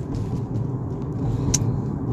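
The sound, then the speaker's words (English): Steady low engine and road rumble fills the cabin of a car being driven home, a constant droning hum with faint higher ticks and one brief bright click near the end. “I'm riding my car home, guys, from a long day.”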